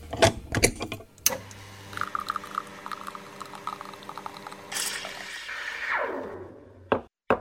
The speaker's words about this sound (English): And now, let's head over to the espresso machine and brew up another leadership espresso shot.